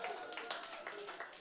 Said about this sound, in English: yeah, you can cheer for that. That was awesome. That was a good thing to do.